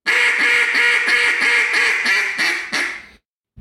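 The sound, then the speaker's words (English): A raspy hen duck call blown by a caller opening his throat for extra rasp, about eight loud, harsh quacks in a quick steady run that ease off slightly at the end before stopping. “That's raspy. Real raspy.”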